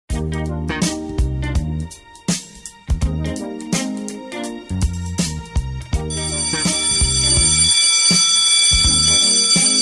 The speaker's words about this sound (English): That's the bell signifying it's time to wrap the show.